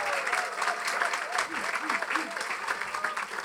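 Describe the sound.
An audience applauds to welcome a race car driver, with steady, dense clapping that lasts the whole moment, a bright crackling wash with a few voices calling out underneath.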